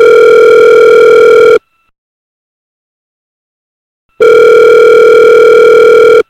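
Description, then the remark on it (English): An outgoing phone call rings over a speakerphone: two long, steady electronic ringback tones separated by a few seconds of silence, loud, with no one speaking. “So, yeah, call him up. We'll just do it on speakerphone here.”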